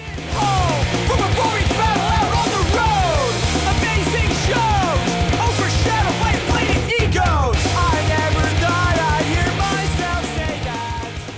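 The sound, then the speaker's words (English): Loud, dense hardcore song with shouted, yelling vocals over fast, driving drums and distorted guitars, sustained at full intensity throughout with a brief break near the middle. “basically the whole, what the guitar's are doing very fast drum type of driving stuff. And we got some, the vocals start out with a very like hardcore type of like the yelling, not screaming, but I guess like shouting maybe.”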